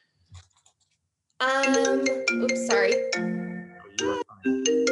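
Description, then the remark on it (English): A mobile phone ringtone plays loudly, a bright melodic sequence of chiming tones that starts abruptly after a brief quiet moment and keeps going. “Sorry, I have my phone on do not disturb.”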